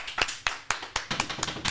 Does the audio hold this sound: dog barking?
no